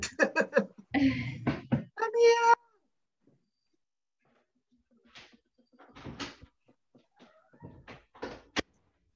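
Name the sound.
cat meowing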